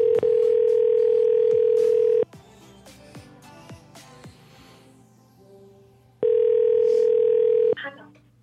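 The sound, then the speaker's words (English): A telephone tone from an outgoing call: two loud, steady electronic hums, each about two seconds long, separated by a four-second pause with faint background noise. “Okay, Daddy's getting a phone call from Delta now.”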